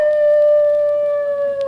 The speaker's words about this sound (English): that sounded like a wolf. It can't be a wolf. We're too far from Hollywood and Vine.